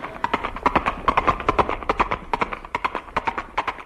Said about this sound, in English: No, no, no, that's Granny, the Wonder Horse. The vain beast.